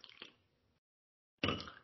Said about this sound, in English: Well, I just cracked open a Bud Light, so let's take a sip here quick.